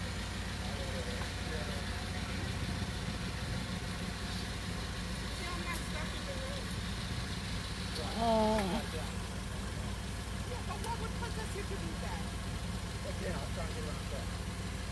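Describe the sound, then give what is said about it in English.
A car engine idles in single-lane traffic on Jordan Street with a steady, low rumble that holds throughout, while faint muffled voices and a brief louder sound rise partway through. “See, I'm in the line of traffic, which is single lane.”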